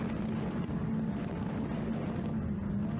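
A bass boat's outboard motor roars steadily across Smith Lake during the blast off of a major tournament, a loud, continuous engine drone with rushing wind and water noise, no voices.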